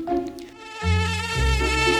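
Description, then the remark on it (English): A high-pitched mosquito whine drones steadily for a couple of seconds, its pitch shifting as the insect moves. No voices accompany it. “Mosquitoes can be so annoying. Their buzzing wakes you up at night, and their bites are super itchy.”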